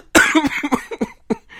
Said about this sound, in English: And I mean, so you're gonna make me cough.